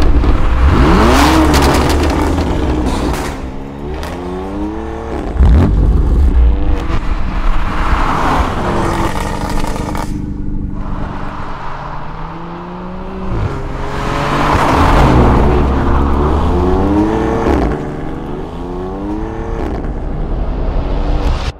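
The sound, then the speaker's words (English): A BMW M4 Competition convertible's engine revs hard and loud while driving on an extremely hot day, pitch climbing and dropping through several gear shifts in repeated surges, with road and wind noise underneath. “Today the weather was extremely hot, so we thought, let's get a convertible. And not just any convertible, let's get an M4.”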